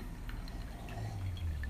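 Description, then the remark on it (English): A few faint, light glass clinks of glasses touched together in a holiday toast, ringing briefly over a low background hum with no talking. “We're getting cheers.”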